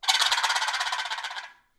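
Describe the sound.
A turkey gobble played on a box call: a fast, raspy rattle of evenly spaced wooden clucks lasting about a second and a half, holding loud before trailing off, with no talking.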